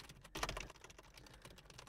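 Quick, irregular clicks of someone typing on a computer keyboard, faint, with a brief louder flurry of keystrokes early on and no voices.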